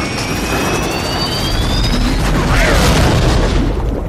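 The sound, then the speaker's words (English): A loud, continuous jet engine roar fills the scene with rushing wind, high whining tones sliding downward as an airplane goes down in a crash at night, heavy rumbling throughout and no voices. “You can feel the wind. You can see glimpses of light and sparks and things, but you feel like you're part of a plane crash.”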